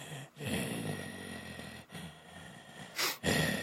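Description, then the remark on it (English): A voice imitates heavy, rasping breathing with a low grumbling undertone, three long noisy breaths broken by short pauses, ending in a sharper hissing inhale. Fairly loud, with no words. “And he breathes kind of hard, like you can hear him breathing if it was really quiet.”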